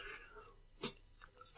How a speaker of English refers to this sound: A big gulp of water.